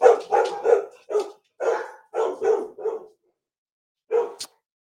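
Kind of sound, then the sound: animal, dogs barking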